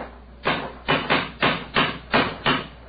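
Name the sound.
cane knocking on stone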